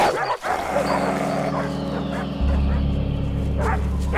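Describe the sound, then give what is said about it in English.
Dogs bark in short, scattered bursts, some sharp yips among them, over a steady low droning hum that grows louder partway through. “Dogs to the left of us. Dogs to the right of us.”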